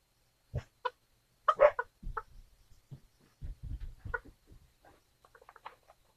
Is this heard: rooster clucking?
yes